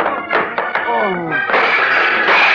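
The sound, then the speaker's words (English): A few quick, dull thuds of a punch connecting with a man's chin and cutting it, followed by a strained, gliding grunt and a burst of rough, loud scuffling noise. “One more and his chin was cut.”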